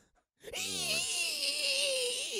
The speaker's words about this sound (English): What's that screaming? Oh, that's just the people here at the water park. They're in a lot of pain.